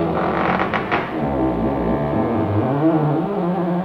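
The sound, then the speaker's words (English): A house creaking: a long, low, wavering groan that holds steady for several seconds, with a few brief sharp ticks near the start and no voices. “The house was creaking all night.”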